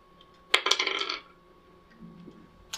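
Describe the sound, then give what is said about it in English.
Dice clatter across a hard tabletop during a tabletop role-playing game, a quick burst of rattling taps that settles within about half a second, followed by near silence and one last faint click. “since Lizard Priest is right next to you, you can roll with advantage. And I would recommend not rolling on the paper.”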